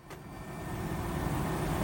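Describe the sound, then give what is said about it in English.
An RAF Puma helicopter passes overhead above Kabul, automatically firing off flak: a steady, broad engine roar with a low, choppy pulsing underneath, swelling slightly louder over about two seconds, with no voices. “An RAF Puma helicopter flying above Kabul automatically fires off flak to protect against the heat-seeking missiles used by the Taliban.”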